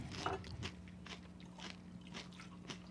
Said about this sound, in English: He's literally scooping the pearls out of that cup and eating them.